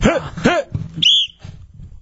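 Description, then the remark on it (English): A single short, shrill whistle blast rings out at a steady high pitch, following a couple of loud yelping, bark-like cries, with low rumbling noise continuing underneath. “Stop with the whistle. Whose whistle is that?”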